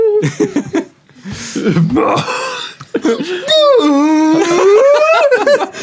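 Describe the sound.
A person imitates whale calls with loud, drawn-out wavering moans that rise and fall in pitch, broken by shorter vocal bursts early on, followed by one long sustained howl-like cry.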